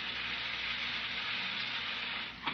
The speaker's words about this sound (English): No, turn on that carbonated water. I want to hear it fizzle.